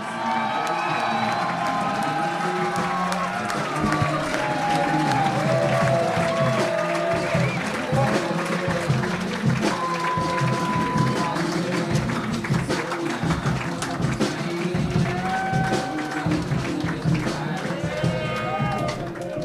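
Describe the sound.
A crowd applauds and cheers steadily for the whole stretch, dense clapping mixed with shouts and whoops, loud and sustained with scattered voices calling out over the noise, as a performer is introduced.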